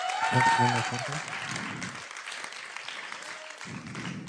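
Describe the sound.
An audience breaks into sustained applause, a dense patter of clapping that holds steady for several seconds, with some talking mixed in underneath at the start and end.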